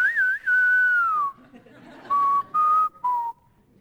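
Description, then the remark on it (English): Someone whistles the spaghetti-Western showdown tune from Clint Eastwood movies: a quick warbling rise, a long sliding note dropping away, then three short, separated notes, with only faint background noise and no talking. “If we were there right now, we would hear that whistle. I can't even do it.”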